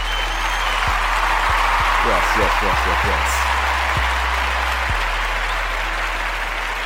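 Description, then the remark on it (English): A hand clap sound effect of steady applause from many clapping hands fills the whole stretch at an even, loud level, while a voice repeats a short word several times over it. “Actually, we could do the little hand clap thing.”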